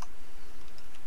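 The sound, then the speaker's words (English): Several light, quick clicks of typing on a computer keyboard while doing research, irregular and fairly soft, with a steady low background hum and no talking. “Let me get my, research... typing fingers on.”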